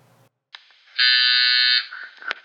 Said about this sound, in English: And here I am at my friend's apartment. Just buzz him up, see if he's home.